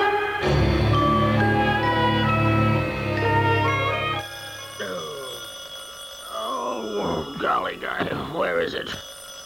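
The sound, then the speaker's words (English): A burst of music fades out, then a telephone bell rings steadily in the background while people begin talking over it. “It isn't the alarm clock, dear. It's the, what? It's the phone.”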